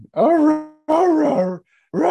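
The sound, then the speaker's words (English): A person imitates a growling dog with three loud, drawn-out throaty snarls, separated by short pauses, with the last one cut off. “Like, what is he doing to be a dog?”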